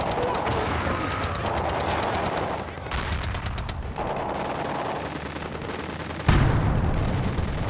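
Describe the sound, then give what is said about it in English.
Rapid bursts of machine gun and rifle fire crackle continuously, with dense rhythmic volleys of sharp shots overlapping, then a heavier, louder burst near the end; no one speaks. It depicts the Rangers opening their attack at 1944 hours in the World War II raid at Cabanatuan against the Japanese. “And at precisely 1944 hours, they opened fire and began their lightning attack.”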